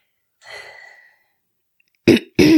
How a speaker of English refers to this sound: You had to clear your throat.